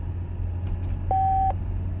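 A single short electronic cell phone call beep, clear and steady, cuts through a constant low engine rumble like the inside of a moving car racing to the governor's mansion. The call goes unanswered. Nobody speaks.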